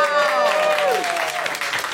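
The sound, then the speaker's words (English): A quiz audience applauds the first-place team, the Black Star Boys, who won with 45 points, in a steady, dense patter of clapping for about two seconds, with voices whooping and calling over the top. “Big round of applause for the Black Star Boys!”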